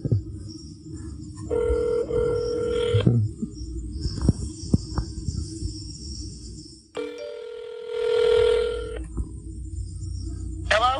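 A phone ringback tone sounds twice on an outgoing call, each long steady ring separated by a pause, heard clear over a low background hum with no one speaking.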